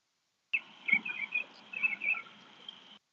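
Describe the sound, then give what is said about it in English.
A burst of bright, high-pitched bird chirps and trills, repeated quickly for a few seconds, a short canned sound effect played from a soundboard, with no one talking. “We got the soundboard over here dropping the bird sound.”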